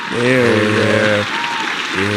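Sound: applause sound effect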